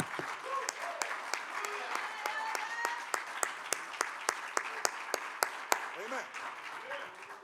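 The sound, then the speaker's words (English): An audience claps hands to the Lord in a steady, even rhythm, sharp loud claps repeating roughly every third of a second over a murmur of crowd voices. “Let's clap our hands unto the Lord and magnify him.”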